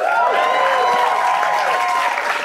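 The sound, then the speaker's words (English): Steady, loud audience applause for the Inflation Reduction Act, with many hands clapping in a dense, continuous wash, mixed with a few cheering voices and whoops, lasting throughout without a pause. “No, it's absolutely great to be in a room that applauds for the Inflation Reduction Act.”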